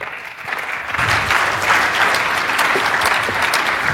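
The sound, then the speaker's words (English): Steady applause from a sizable audience as the CEO of Musicplode Media is introduced to come up and talk about building Alexa skills; many hands clap densely and continuously, swelling in the first second and holding loud throughout with no voices standing out. “Don't clap yet.”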